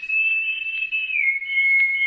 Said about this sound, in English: A long moment of silence, broken only by the chirping of crickets and the hum of insects. Then, almost like a delayed echo, there was an answering whistle.